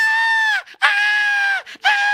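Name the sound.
woman screaming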